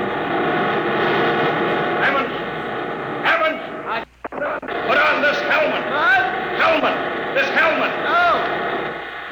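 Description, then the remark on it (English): A loud, dense mechanical roar of giant rotors that drive a moving road churns steadily with droning tones, dropping out for a moment midway, while voices and yelping cries rise over it. “Can't hear without an anti-noise filter.”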